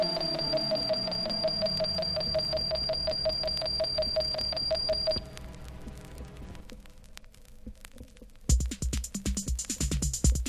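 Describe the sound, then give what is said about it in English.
A bright, high bell rings rapidly and steadily for about five seconds, then cuts off, giving way to a low rumbling clatter and a few harsh, noisy bursts. “Ring bell.”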